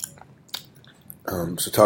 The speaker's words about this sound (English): You're eating the end of a burrito, right? Mm-hmm. It's a crunchy end. Wow. How was it? It's good.